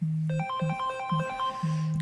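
An electronic alarm jingle announcing trivia time plays alone: a low steady buzzing tone pulses on and off beneath a bright, stepping melody of high synthetic beeps, loud and continuous for two seconds.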